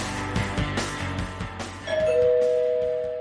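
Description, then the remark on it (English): A doorbell rings with a clear two-note chime that sustains and slowly fades, coming in after a second or two of busy background music. “Someone's at the door. Don't answer it.”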